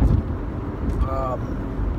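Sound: car interior road noise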